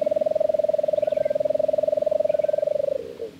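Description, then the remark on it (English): A lesser nighthawk gives a long, even trill just after sunset: rapid low-pitched pulses run steadily for about three seconds, then falter and stop, with faint chirps behind. “Just after sunset, we'd hear the drawn-out trill of a lesser nighthawk.”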